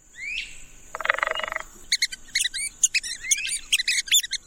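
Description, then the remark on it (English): Red-cockaded woodpecker calls: a harsh, buzzy rasp lasting under a second, then a quick, irregular run of short, high, squeaky chirps. There is no talking. “The red-cockaded woodpecker is a year-round resident of mature southern pine forest in the United States, but now it's listed as endangered.”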